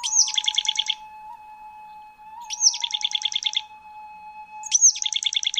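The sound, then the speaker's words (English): A boreal chickadee gives three husky, buzzy calls spaced about two seconds apart, each a sharp high note followed by a rapid burst of raspy notes, over a faint steady hum. “It's Piscelli hudsonicus, the boreal chickadee.”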